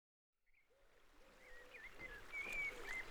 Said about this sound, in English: The early morning fog sits heavily on the River Seine. It's peaceful. Birdsong is the only noise above the slosh of the water under the fisherman's boat.